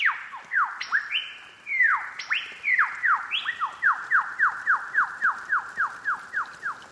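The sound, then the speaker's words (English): A loud, ringing lyrebird's own song of rapid downward-sweeping whistles, starting with varied overlapping notes and settling into a steady, rhythmic series of repeated descending calls, about three per second. “But I think their own song is the coolest one of them all.”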